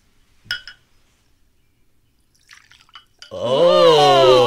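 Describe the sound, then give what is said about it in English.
A single bright clink of shot glasses in a toast rings out near the start, followed by a few faint clicks, then a loud drawn-out vocal sound takes over to the end. “Cheers again. Cheers.”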